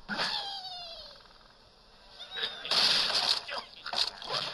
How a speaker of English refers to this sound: That was him inflating. Okay. It sounded just like a bird inflating.